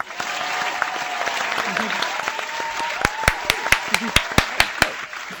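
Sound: round of applause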